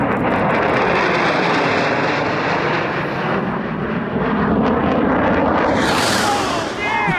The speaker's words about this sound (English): All right, okay. Here we go. All right, there's jet number one overhead.